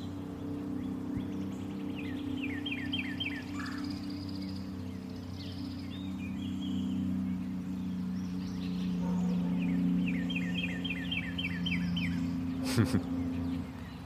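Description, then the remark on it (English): A northern cardinal, just landed on a branch of a tree overhead, sings two bursts of quick, repeated slurred chirps, clear above a steady low rumbling hum in the background. “That's cardinal right above us. He just landed in a branch in the tree that I'm sitting on. And there he goes, chirping away, announcing the moment.”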